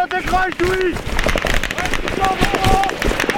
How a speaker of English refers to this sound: Its autocannon and machine gun roar.